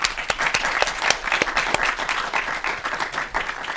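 A crowd breaks into steady applause, many hands clapping in a dense, crackling wash with sharp individual claps standing out, sustained at an even loudness for several seconds.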